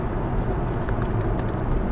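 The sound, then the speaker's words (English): A quick series of light, high clicking ticks, a device's system sounds, repeats at a steady pace, roughly every quarter second, over a constant low rumbling background. No one speaks. “I like the system sounds.”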